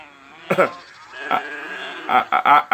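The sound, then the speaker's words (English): Several sheep bleat, a wavering cry followed by a brief pause and then a quick run of overlapping bleats, like a small flock calling over a faint background hum. The sheep, along with cattle, were kept back by soldiers as Amalekite loot. “The soldiers saved back a few of the choice cattle and the choice sheep.”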